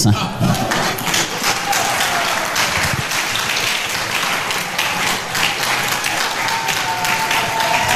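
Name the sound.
audience clapping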